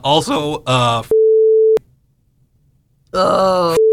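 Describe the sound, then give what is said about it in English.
A voice talks in short bursts, then a steady mid-pitched censor beep, used to bleep out names, cuts in for over half a second. After a quiet gap, speech resumes and ends in another brief beep. “I'm just going to beep the names.”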